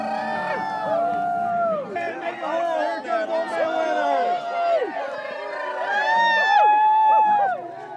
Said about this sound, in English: hauling Old Man Winter onto the bonfire amid cheers and howls from the crowd.